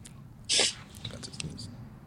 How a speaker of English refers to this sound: Sorry, I was about to sneeze.